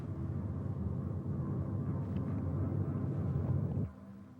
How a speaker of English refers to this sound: Now you may hear a very sort of subtle chamber sound. It's like a drone.